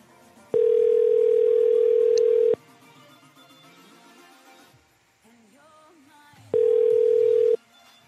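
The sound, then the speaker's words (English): As a phone call is placed to a person's number, a telephone ringback tone sounds twice over the line, each a loud, steady buzz lasting about two seconds, separated by a pause filled with faint background noise. “I don't know if it just doesn't like the number I'm calling from or what, but I just changed it anyway.”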